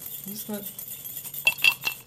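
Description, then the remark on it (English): Glasses clink together in a toast after a Christmas quiz: three quick, bright chinks with a short ringing tone, fairly clear, following a brief murmur of voices. “Cheers.”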